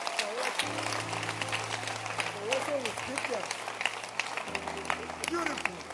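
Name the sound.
audience clapping hands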